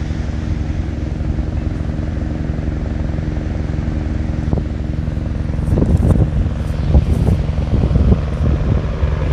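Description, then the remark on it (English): A steady, loud low rumble of a helicopter passing overhead, its droning engine and rotor noise continuous throughout, with a few brief louder bursts toward the end. “I'm speaking on another helicopter coming.”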